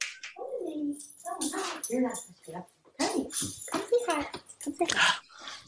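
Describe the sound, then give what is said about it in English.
A dog whines and yelps excitedly in a quick series of high, sliding cries as it is let inside, with voices mixed in around it. “I gotta let my dog in.”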